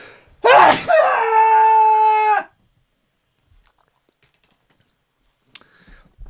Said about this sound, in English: A sneeze is coming on. There's no stopping it. It's coming.